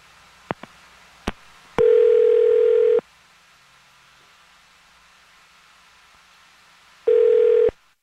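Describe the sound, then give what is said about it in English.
A phone's outgoing ringback tone sounds twice, each steady electronic burst lasting about a second, separated by a long quiet gap, preceded by a few faint clicks. “see if he answers again”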